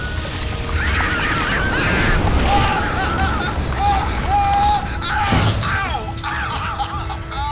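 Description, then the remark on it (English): A loud, sharp shattering blast bursts out as the valve of a compressed air cylinder is shattered with a fire axe, amid a constant roaring, hissing din, with brief whistling honk-like tones before and after it. “If I shatter the valve with a fire axe, it should carry me up the hill.”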